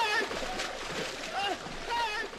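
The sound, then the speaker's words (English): Water splashes and sloshes continuously for a couple of seconds, a broad churning wash under raised, wordless voices and cries, as the character Augustus falls into the chocolate river. “So, yeah, Augustus falls in the chocolate river and then gets sucked up the big suction thing.”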